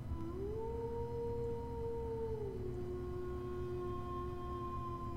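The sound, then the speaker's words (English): Long, drawn-out howls, heard on waking while sleeping outside at a campsite in the early morning before dawn, rise and hold steady, with a second howl joining at a different pitch, layered over a constant low rumble of background noise. No one speaks. “And at first, you're not sure what woke you up before it solidifies in your mind. Howls.”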